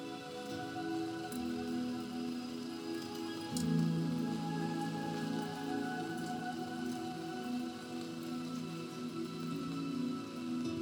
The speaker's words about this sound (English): Shortly after midnight, on the 12th anniversary of the apparition on October 9th, a steady rain began to fall.